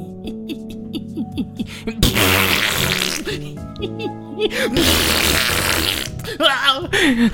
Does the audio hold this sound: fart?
yes